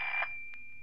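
alarm clock ringing

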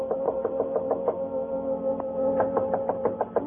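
knocking on a door

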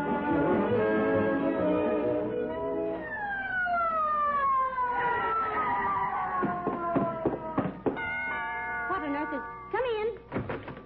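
ambulance siren

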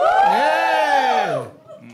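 audience yelling and cheering

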